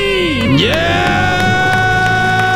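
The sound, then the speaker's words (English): A loud, sustained group scream and cheering erupts, with voices sweeping up in pitch before holding a bright, steady shout of celebration: a family from Peoria, Illinois doing a debt-free scream on The Ramsey Show after paying off $200,000, house included. “That's his debt-free scream.”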